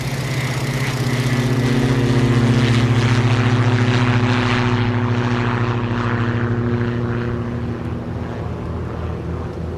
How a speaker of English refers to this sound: They push us to, like, the beginning of the runway. It was a smooth takeoff, for sure.